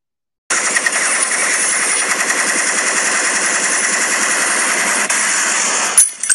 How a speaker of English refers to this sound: Shots fired.